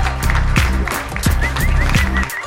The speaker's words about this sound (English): Between the clapping and the whistling, one could hear phrases like, "Stand up, we got an in-house hero.